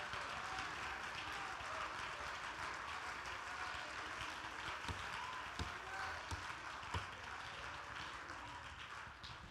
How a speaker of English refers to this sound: Lord, I feel Holy Ghost right now. Let's clap our hands and praise Him again.